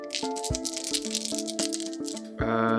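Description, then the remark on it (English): Dice rolled in a tabletop role-playing game for an average-difficulty piloting check rattle and clatter in a quick, busy run of sharp clicks for a couple of seconds, over steady background music with sustained tones that swell louder at the end. “These dice have been interesting today.”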